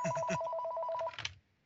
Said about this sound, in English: Unexpected phone call.